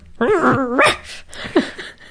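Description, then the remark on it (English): A person vocally imitates a dog growling and barking while dreaming in its sleep: muffled, sleepy barks and whimpering yips, a short wavering run of woofs followed by a couple of softer breathy yelps, fairly loud. “I love when my dog growls and barks in her dream. She does just so.”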